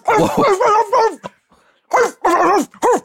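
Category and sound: animal, dog barking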